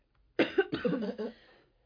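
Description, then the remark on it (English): A short fit of several rough, chesty coughs in quick succession from a person with a cough that has lasted about a month, fairly loud, then trailing off into quiet. No one speaks. “I hate this cough that I had that will not go away.”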